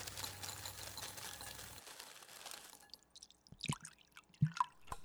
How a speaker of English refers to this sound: He opened it up to smell the contents of the gallon. Not noticing anything out of the ordinary, he proceeded to pour the milk into his bowl of Cheerios.